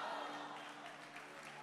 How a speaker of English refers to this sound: I've told you, just stop clapping hands.